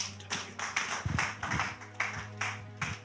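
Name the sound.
audience clapping hands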